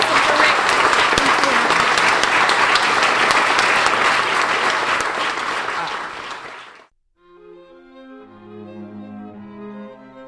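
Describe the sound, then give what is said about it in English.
Loud, dense audience applause rolls on for about seven seconds, tapering slightly before cutting off abruptly, then a short pause gives way to gentle music. “I'd just like to have a round of applause for me.”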